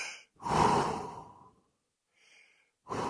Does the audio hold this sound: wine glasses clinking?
no